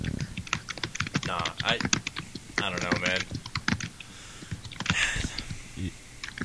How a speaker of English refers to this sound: Your typing is amazing.